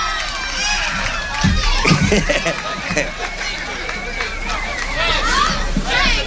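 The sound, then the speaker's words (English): A woman yells from within a noisy nightclub audience, her raised voice cutting over a steady, dense hubbub of overlapping chatter and shouts that fills the space throughout. “Don't yell, honey. You'll bust your lungs there.”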